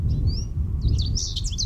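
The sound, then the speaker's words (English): Birds sing from the tree branches above in a bright, busy run of chirps and whistles, starting with one rising whistle and building into a quick, fluttering chorus over a low outdoor rumble. “The graceful melody of birds cascaded from the branches above, sending a cool revitalizing breeze down Ezra's entire body.”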